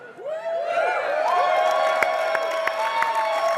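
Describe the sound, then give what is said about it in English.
A convention audience erupts in loud, sustained screams and cheers as Alliance players are called on, with high whooping voices rising and swooping over scattered sharp claps that continue steadily throughout. “Oh, there's three people who screamed really loud.”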